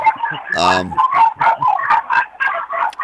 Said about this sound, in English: You got some crazy fucking dogs there, I'll tell you that.